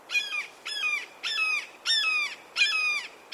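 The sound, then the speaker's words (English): A red-shouldered hawk gives a rapid series of five loud, harsh, slightly downslurred screams at a steady rhythm. The calls are clear, with no other sounds around them. “The Red-shouldered Hawk - One Gorgeous Bird of Prey”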